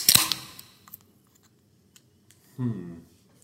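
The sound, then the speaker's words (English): A can of Bud Light Lime beer cracks open with a sharp pop and a quick fizzing hiss that fades, followed by a few faint clicks and a short voiced sound from someone. “All right, let's crack this thing and let's take a sip.”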